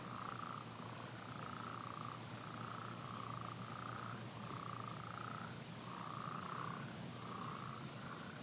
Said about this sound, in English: You hear all the frogs. And the crickets.